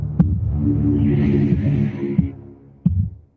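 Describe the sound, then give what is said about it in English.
A deep, throbbing heartbeat-like pulse over a dark, sustained low drone, from the film A Nightmare on Elm Street, with a few heavy thuds spaced unevenly before the sound fades out. No one speaks. “That's how my heartbeat sounds.”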